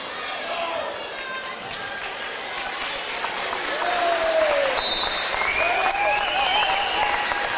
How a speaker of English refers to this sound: How about that nice round of applause as Dante Work comes to the bench for the final time tonight? Yep, real good crowd tonight.